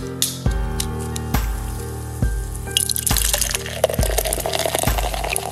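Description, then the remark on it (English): Solar Dog IPA from Astoria Brewing Company of Astoria, Oregon glugs out of a bottle in a steady rhythm of about six low, hollow gulps, while a bright fizzing hiss of foam builds up in the second half. No one speaks. “We are drinking Solar Dog IPA by the brilliant minds over at Astoria Brewing Company in beautiful Astoria, Oregon.”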